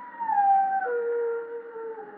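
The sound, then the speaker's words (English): A dog howls in one long, sustained wavering note, its pitch sliding slowly downward with a mournful quality, steady throughout, with no voices present. “It means someone's going to die when a dog howls like that.”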